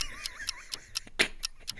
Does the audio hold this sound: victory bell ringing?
no